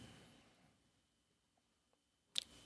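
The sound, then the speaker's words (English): A computer mouse clicks twice near the end, sharp, as someone clicks on a true-or-false answer, after a stretch of near silence with faint background hum. “Well, I clicking on the true or false, it automatically says false.”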